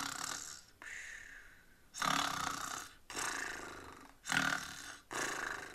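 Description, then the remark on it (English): Several children make exaggerated snoring noises together, a rough, breathy snore repeated in steady bursts with short pauses between, loud. “So put your head on your hands and snore away.”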